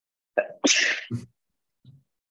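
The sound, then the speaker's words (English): A single loud sneeze caused by allergies: a short sharp intake, then a bright explosive burst, followed by a brief faint sniff or murmur afterward. “Sorry, I'm about to sneeze again.”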